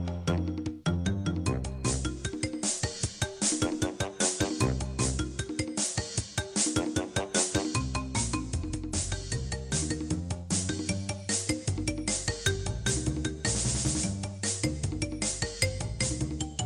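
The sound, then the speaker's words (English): Upbeat chiptune-style game music with bright square-wave melodies and a steady bouncing bass line, loud and continuous with no voices. “I'm going to cue up some retro music.”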